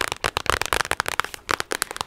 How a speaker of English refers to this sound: Honestly, tapping on this kind of packaging is a really nice trigger too.